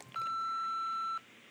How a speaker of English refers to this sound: When you hear the beep noise, please speak into the telephone receiver and leave a message which I will play back and listen to later. This is the end of the message, and here is the beep I was talking about.